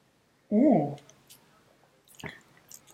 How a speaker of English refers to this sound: Okay, so sip. Sip.